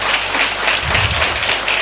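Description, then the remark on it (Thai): A crowd applauds with a steady, dense wash of clapping that holds at an even loudness for the whole couple of seconds, with no voices standing out. “แล้วผมก็ได้ตั๋วไปเพิร์ทเป็นทริปแรกนะครับที่ตัดสินใจไปกับธุรกิจไอเมก็เสียงปรบมือดังด้วยนะครับกับไอเวนะครับ”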